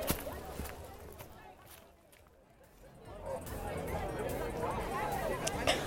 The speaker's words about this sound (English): Okay, the crowd is definitely getting bigger, but there's not much activity yet.